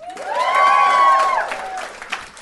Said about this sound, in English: Give me a round of applause if you feel good to be here.